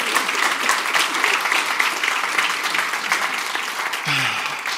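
A church audience applauds steadily throughout to honor a woman, a dense, sustained wash of many hands clapping, with a brief voice surfacing near the end.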